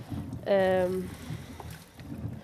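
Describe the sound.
Water rushes steadily into a bucket being filled halfway with drinking water, a continuous hissing, splashing flow, briefly overlapped by a short tonal, voice-like sound near the start.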